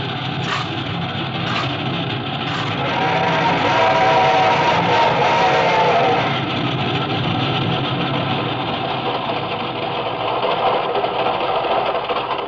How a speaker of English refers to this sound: This train ain't going very fast. He's climbing, honey boy. Wait till we get over the mountain, you'll see her go.